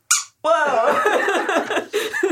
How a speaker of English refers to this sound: Instead of having a big red squeaky nose, you have it inside your hand. I can make your nose squeak.